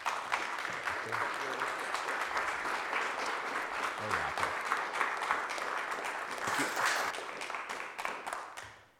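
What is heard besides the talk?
audience round of applause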